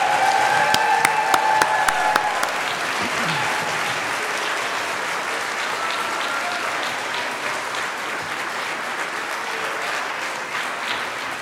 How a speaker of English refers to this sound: Let's give our children and our orchestra and our arts director one more big round of applause.